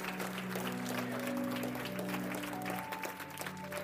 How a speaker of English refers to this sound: Come on, give the Lord a hand clap, somebody. Woo.